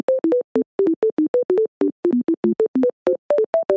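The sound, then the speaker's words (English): A rapid, steady run of short electronic beeps at shifting pitches, a Bluetooth pairing tone as a phone connects for the first time to a Rodecaster mixer, loud with no voices over it. “So we clearly just connected to the Bluetooth for the first time on the Roadcaster.”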